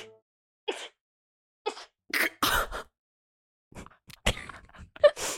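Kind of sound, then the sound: human body sound, sneeze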